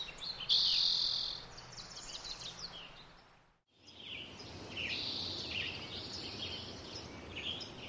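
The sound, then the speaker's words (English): A dense, lively chorus of many wild birds singing and chirping at once, with overlapping high calls over a steady natural background hiss, briefly dipping to near silence midway before resuming; recorded in spring 2004 at Sugarloaf Ridge State Park. “In 2004, you can hear what sounds like a rich and vibrant community of birds.”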